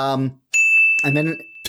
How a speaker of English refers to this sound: Someone ring the bell.